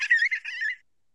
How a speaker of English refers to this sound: Sorry, that was my daughter screaming in the background.